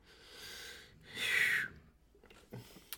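A female dog snores: two raspy, breathy snores in a row, the second louder and more nasal, followed by a few faint clicks and rustles.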